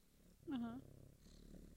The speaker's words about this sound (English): See, now she just wants to cuddle on my shoulder. But the purrs are definitely getting picked up. It's great.